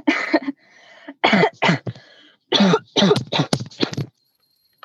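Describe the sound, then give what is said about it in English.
A harsh, rasping coughing fit: several loud bursts in quick succession with short gaps between them, the last ones coming rapidly before it stops. No one speaks. “Oh, your cough.”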